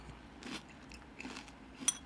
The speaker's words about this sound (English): Something about it gives it like a very like crunchy, flaky crunch to it, not like a regular cereal crunch. It's slightly different.